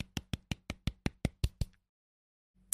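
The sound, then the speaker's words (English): A steady run of about nine sharp hand claps at an even, brisk pace, then a short silence before one more clap. No one speaks. “Yeah, let me clap.”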